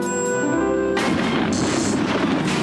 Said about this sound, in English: The elevator has been struck by magic lightning. The elevator is falling.